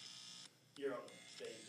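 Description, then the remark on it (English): A harsh electrical buzz caused by faulty audio cords hums steadily, cuts out briefly, then returns alongside a rising, wavering tone, moderately loud, with what may be voice sounds mixed in. “Okay, well, we're trying to resolve the... The buzzing. It's those damn cords, I guess, right?”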